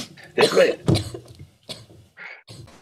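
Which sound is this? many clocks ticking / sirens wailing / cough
cough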